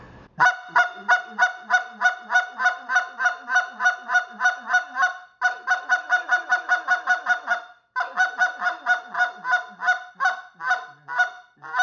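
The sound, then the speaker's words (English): A goose call blown in rapid, evenly spaced clucks, sped up, loud, running in three quick bursts with brief pauses between them and no talking. “I'll put my rasp in the beginning, but once you got that cluck, we're going to start speeding that cluck up.”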